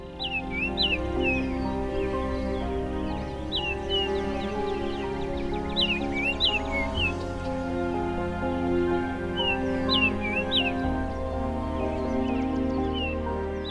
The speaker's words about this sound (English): we'll be listening to some freshly arrived Baltimore Orioles at 50 Point Conservation Area,